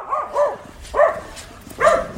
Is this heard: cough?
no